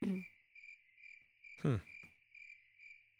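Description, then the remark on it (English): A steady, shrill drone of cicadas and other insects pulses rhythmically throughout, outside in the woods, with a brief louder rustle or voice-like burst partway through. “You guys, that's what it sounds like. Yeah. Outside in the... There were more cicadas, though.”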